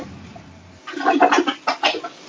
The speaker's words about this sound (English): Is someone flushing the toilet?